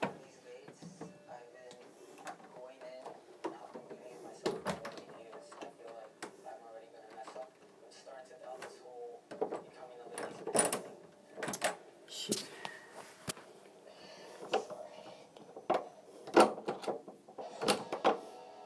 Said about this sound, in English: So all the doors are locked. All is safe and well.